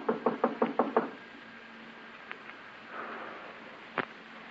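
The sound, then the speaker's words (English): A quick, even series of six knocks on a door, fairly loud, followed by quiet with a faint steady hum, a couple of small clicks and one later thump. “Give him a knock.”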